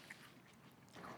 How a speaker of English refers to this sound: Watch, he comes up and coughs.